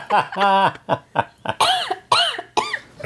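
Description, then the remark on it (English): A loud run of real, harsh, throaty coughs, about half a dozen bursts in quick succession, some of them strained and voiced, with no talking in between. “The cough is a nice touch, though.”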